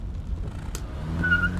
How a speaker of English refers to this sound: So you all hop in the car, and Nichols starts the engine, and you drive off heading west.